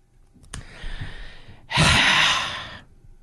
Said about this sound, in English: What's with the heavy breathing? Is that … or …?